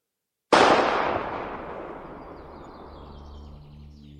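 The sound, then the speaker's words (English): A single sharp gunshot cracks out loudly across a field on a calm day, then rolls away in a long, fading echo, with faint sustained tones creeping in near the end. “A gunshot echoed throughout the field on the calm and gentle day.”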